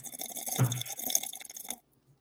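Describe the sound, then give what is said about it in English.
A close, quiet slurping sip of a drink lasting nearly two seconds, with a soft wet gulp partway through, then silence. No one speaks. “I'm just going to go ahead and do the Kermit the Frog tea sip here.”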